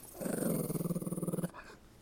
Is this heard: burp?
no